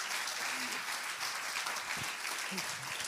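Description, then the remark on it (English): An audience at a church service applauds a guest with dense, steady clapping for the whole stretch, with a few faint voices murmuring underneath. “Can we give him a hand clap this morning?”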